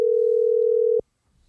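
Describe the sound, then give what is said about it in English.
A steady, loud telephone dial tone hums for about a second as a call is placed, then cuts off abruptly into near silence with faint rustling. “So why don't I get Doug on the phone”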